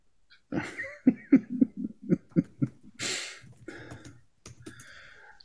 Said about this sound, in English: I spent the last 20 seconds laughing and coughing very unpleasantly.